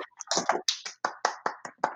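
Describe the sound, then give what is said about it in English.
A quick run of finger snaps celebrating new intro music, about eight or nine crisp clicks in a loose, uneven rhythm, as if several people are snapping together. No one is talking. “Snaps all around.”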